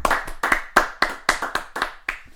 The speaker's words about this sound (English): Clap it up. Clap it up.